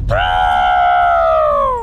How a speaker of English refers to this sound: Elephant stopped and trumpeted loudly.